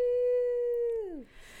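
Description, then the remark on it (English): A single sneeze from one person: a long, steady, drawn-out voiced wind-up that sags in pitch, then breaks into a short, breathy burst of noise. “No sneezing.”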